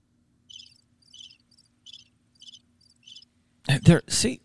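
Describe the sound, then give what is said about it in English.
A crickets sound effect is played by pressing a soundboard button: five short, evenly spaced trills, fairly soft and steady, before a loud burst of human voice cuts in at the end. “and I was working on some radio stuff, and I just touched it and the crickets/birds came on.”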